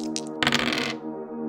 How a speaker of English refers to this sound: Finally, whilst I'm here behind the screen, I'm going to make a roll to see whether there is anything of value in the sarcophagus. I am going to say that there is a 10% chance of something. Here is the roll on a D100.